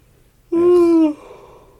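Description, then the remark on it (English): A single loud vocal yawn, a sustained voiced tone lasting over half a second that sags slightly in pitch before cutting off, with quiet background around it and no talking. “I'm not yawning at all.”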